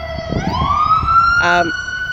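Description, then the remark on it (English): An ambulance siren wails past, its loud tone sweeping upward and holding high, with a brief harsh horn-like blast near the end over low traffic rumble. “Should we wait for that? Yeah, as the police... Paramedic. The paramedic go by.”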